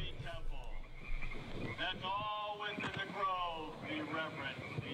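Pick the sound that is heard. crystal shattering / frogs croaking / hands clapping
frogs croaking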